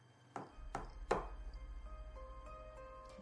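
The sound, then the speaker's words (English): Three short, dull knocks on the door to the nurse's quarters, evenly spaced and each a little louder than the last, followed by a steady low hum with faint tonal ringing. “And then you hear three little knocks on the door to the nurse's quarters.”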